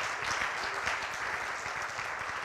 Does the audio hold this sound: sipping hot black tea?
no